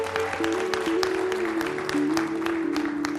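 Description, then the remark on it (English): An audience at Christian Worship Center church claps steadily and enthusiastically, a dense wash of hands, while sustained organ or keyboard chords hold underneath. “Go ahead and clap.”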